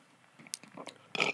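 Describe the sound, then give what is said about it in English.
A rasping burp erupts near the end, preceded by a few brief, guttural throat noises; no one speaks. “Burping all the time in this show.”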